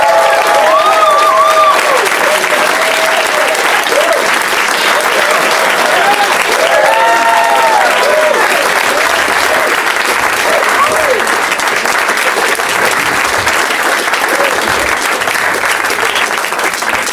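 An audience at Doug Loves Movies claps loudly and steadily as guests Morgan Murphy, Samm Levine and Leonard Maltin are brought out, a dense continuous roar of applause with scattered whoops and cheers rising above it.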